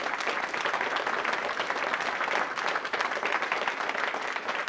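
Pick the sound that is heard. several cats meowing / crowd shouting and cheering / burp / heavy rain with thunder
crowd shouting and cheering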